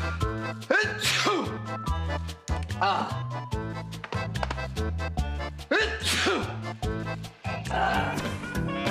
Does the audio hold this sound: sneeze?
yes